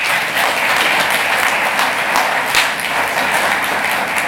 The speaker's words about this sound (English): So it's a good introduction for tonight. So once again, give them a round of applause.